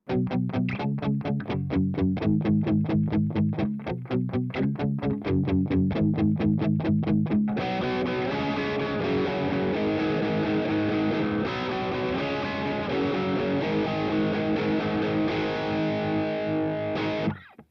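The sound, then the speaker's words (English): Distorted electric guitar through an amp-like preamp pedal set with gain at 9 o'clock, bass at 2 o'clock, mids and treble at 10 o'clock, volume at unity, aggression switch off: first a fast, chugging rhythm of palm-muted chords for about seven seconds, then sustained, ringing overdriven chords that hold steady and loud to the end. “It sounds great, and it feels extremely amp-like.”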